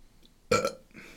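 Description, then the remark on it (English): A single short, loud burp bursts out after a moment of near silence, then trails off into faint background noise. “I was trying not to burp, and then I realized I'm the only one talking.”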